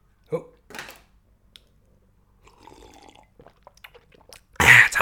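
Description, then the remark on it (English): Sipping and swallowing of water, with small wet clicks and a soft gurgle in the middle, ending in a sudden loud breathy gasp. “Pardon me. Sip of water. Water break, boss.”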